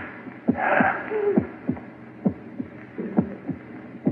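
A person's heart beating in steady thumps, roughly two per second, low and muffled, with a brief breathy rush near the start. No one speaks.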